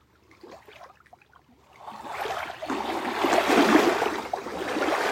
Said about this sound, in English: Coming to you from the shores of Gitchigami, the big lake. Lake Superior. Letting her waves soothe.